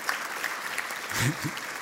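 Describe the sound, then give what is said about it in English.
A church audience claps for people being baptized, a dense, steady patter of applause, with a few voices calling out briefly underneath near the end. “You have to hold the applause because I got other stuff.”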